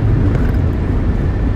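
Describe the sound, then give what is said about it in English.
Steady low-frequency rumble of a car driving on a hot day, heard from inside the cabin of a car with no window tint, with a constant engine and road drone filling the short clip and no talking. “This drive on the way up, it was so hot, and you know this car doesn't have any tint, so it gets hot in here.”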